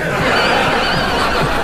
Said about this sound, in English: What's happening? Why are the horses getting so agitated?